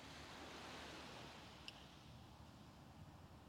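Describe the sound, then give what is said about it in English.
Steady, soft wash of ocean surf rolling onto a shore, a continuous hiss with no distinct wave peaks, with no voices. “And they fall along the shore, creating a peaceful trickling sound all along the way.”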